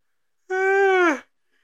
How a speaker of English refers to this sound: Hey! Yawning like a fucking asshole.